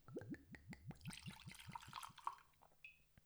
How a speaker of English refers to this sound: He's getting much more subtle with his pours, which I do? Is nice.